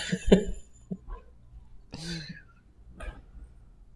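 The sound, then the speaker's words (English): A few short, dry coughs, spaced irregularly across a few seconds, with a brief voiced throat sound in between and no clear speech. A person is coughing from the powder on popcorn they are eating. “It's really good, but the powder on it's making me cough.”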